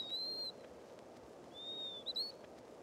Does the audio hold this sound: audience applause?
no